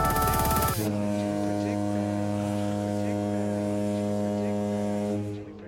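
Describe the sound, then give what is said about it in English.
A loud, sustained droning tone with steady layered harmonics holds for several seconds after a brief burst, ringing evenly like a long echoing hum before fading slightly at the end. “And then there's about 45 seconds of I can see just that. This echo.”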